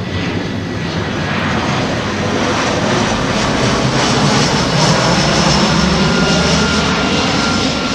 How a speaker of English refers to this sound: I stood in somebody's back garden, and a plane came over. This was a commercial jet. So I've got a sound effect of this. Just take a quick listen to this. This is in somebody's back garden, a plane going over.